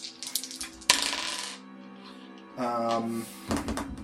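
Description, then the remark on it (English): Dice clatter and tumble across a hard surface in a few quick bursts of sharp, ringing clicks, settling after about four seconds, rolled for an investigation check that comes to sixteen. No one speaks. “Okay, roll me an investigation.”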